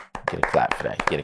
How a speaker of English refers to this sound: Yeah, you get that. You get that one. Yeah, you get that. Yeah, you get a clap for that.